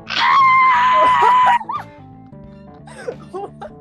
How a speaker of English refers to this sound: The audience started screaming.